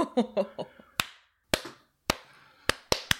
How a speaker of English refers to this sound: I slow clapped you. I love that so much.